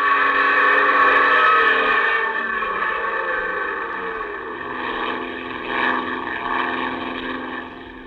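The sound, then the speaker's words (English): A propeller plane engine roars steadily, its harmonic drone wavering in pitch as it strains and surges, easing slightly near the end. No voices. “The plane twists wildly. You pull open the throttle.”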